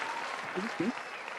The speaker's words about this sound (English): But needless to say, let's clap it up for all those wonderful scholars and the panel yesterday.